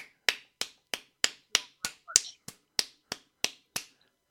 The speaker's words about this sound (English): Happy clap.